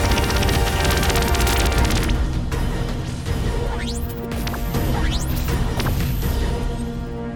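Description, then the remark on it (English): A dense, loud barrage of explosions and deafening booms, continuous, with rapid crackling bursts early on and several rising whooshes streaking through the roar. “Around me, the world exploded in blinding flashes, deafening booms, and bloody impacts.”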